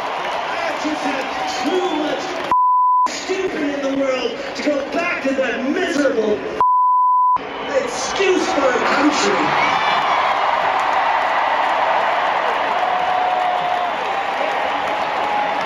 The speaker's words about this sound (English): Yeah, I think what makes me more angry is the cheering. Like, I'm less upset by what he's saying, and I'm more upset by the cheering by it.